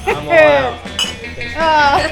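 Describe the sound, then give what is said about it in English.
A single bright clink of beer glasses touching in a toast with Christmas beer, brief, set between loud, cheerful exclamations from a few people. “This is the cheer for the podcast that you're listening to today. Hey! Yeah! Cheers!”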